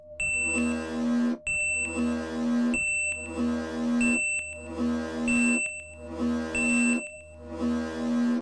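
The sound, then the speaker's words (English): A loud electronic civil defense alarm of a city sounds its klaxon in steady, evenly spaced pulses, about six or seven harsh tonal blasts separated by brief gaps, with no voices. “I was interrupted by one of the city's civil defense alarms. The tones and duration of the klaxons told us that the threat was an attack by a magical person or persons.”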